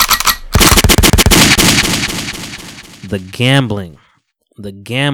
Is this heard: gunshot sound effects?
yes